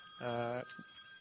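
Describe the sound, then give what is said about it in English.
A single short ring of a bell, a steady buzzing tone with a rich, even pitch lasting about half a second before cutting off into quiet background hum. “And I'm being saved by the bell.”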